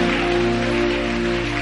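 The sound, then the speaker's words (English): An audience claps steadily, a dense, continuous patter of many hands, with sustained musical tones droning underneath. No one speaks. “As you are clapping, I see that blessing coming to you right now.”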